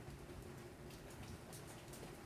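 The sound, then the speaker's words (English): Steady rain falls outside in a continuous, even hiss with soft low rumbling underneath, fairly quiet and unbroken, with no voices present. “It is raining outside.”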